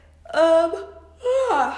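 A person yawns aloud, a drawn-out voiced groan in two parts separated by a short pause, the second stretch sliding in pitch before trailing off. No words are spoken.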